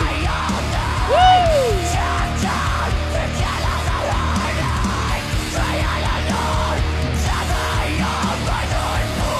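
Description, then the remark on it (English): A crowd screams and yells loudly and continuously, many voices overlapping into a dense roar, with one prominent yell sliding up and then down early on. “Get the scrims. I want some loud scrims.”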